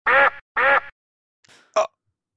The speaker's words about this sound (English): We'll put the duck sound over that. Whack, whack, whack.